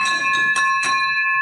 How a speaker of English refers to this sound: Hold on 1 second. Victory bell.